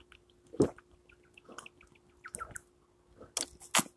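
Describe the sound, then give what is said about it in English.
Someone drinking water, with a series of wet gulps and swallows at irregular intervals, about five in all, over a faint steady background hum. “That's me drinking water.”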